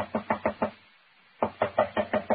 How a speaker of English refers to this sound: She must be out. Door is locked. Knock again, if you don't mind.